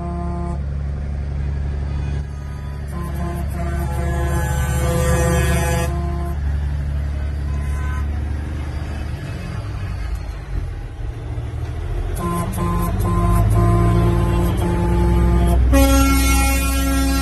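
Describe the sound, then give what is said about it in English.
Loud, sustained air horns of protesting truckers' trucks blare over a low engine rumble, several horns overlapping and stopping and starting in long blasts as Ted Cruz meets with the truckers, with no talking. “Honk, honk, honk.”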